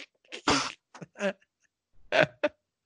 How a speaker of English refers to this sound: Like he's crying from coughing, not like crying from pain. Just he's coughed so much he's starting to tear up and crying.